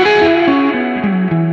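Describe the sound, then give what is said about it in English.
An electric guitar played through an Ebo reverb pedal plays a short run of descending notes, each one ringing into a lush, washy sustain that stays loud, with no voices. “So it's just drool-worthy reverb.”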